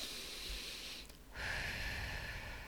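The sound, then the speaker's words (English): A slow, deep breath drawn in, a brief pause, then a long airy exhale, loud and breathy with no talking. “The ways for us to disconnect the automatic egoic response is to take a few deep breaths and allow our autonomic nervous systems to engage.”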